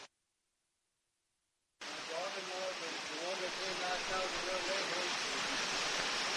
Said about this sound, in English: All right, yeah, we got a little rain. You can hear it.